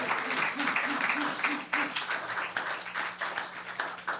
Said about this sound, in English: A round of applause for old Chuck, wherever he is.